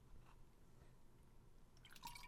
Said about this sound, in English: Did you have to take? Did you just have to take a drink of water? I did.